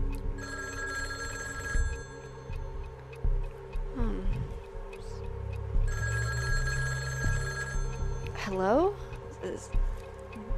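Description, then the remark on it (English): An old-fashioned telephone bell rings twice in long, buzzing bursts, with strange warbling, gliding tones in between over a low, steady rumble. “I'm sorry, passenger, that phone's not for you.”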